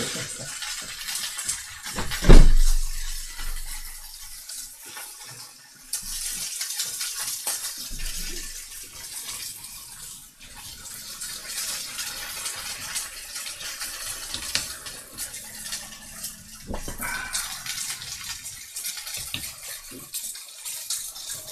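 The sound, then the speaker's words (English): Food sizzles steadily in a hot pan, a continuous bright hiss dotted with small crackles and pops, moderately loud, with a brief louder clatter early on and no voices. “Still, you can still hear what we say over the sizzling.”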